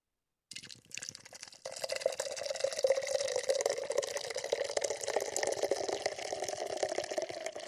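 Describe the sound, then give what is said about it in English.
Guinness beer pours steadily into a glass, a continuous liquid gurgle and fizz that starts with a brief splash and settles into a sustained foamy stream. “And let's pour it out.”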